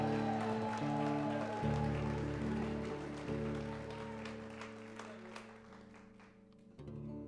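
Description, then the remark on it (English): A huge a singer's crowd applauds a singer with steady clapping over sustained music chords; the clapping is dense at first and gradually thins out toward the end. “Let's give a big hand!”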